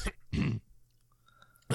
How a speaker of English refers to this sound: Did you just cough on all of your chips?